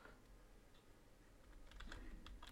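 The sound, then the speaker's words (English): Quick, irregular clicking of keys on a computer keyboard, fairly quiet, picking up into a busier burst of taps toward the end with no voices. “I'm typing away. Because I can't remember her name.”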